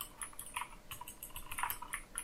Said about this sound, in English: Sorry, I'm typing.